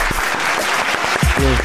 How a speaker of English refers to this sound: Hold on, you know what? For that, you deserve a big clap.